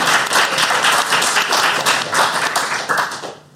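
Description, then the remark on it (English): An audience applauds with dense, steady clapping for the audience team, placed third with 3 points on the show; the clapping holds strong for about three seconds, then thins out and fades near the end. “But still, a round of applause for the audience.”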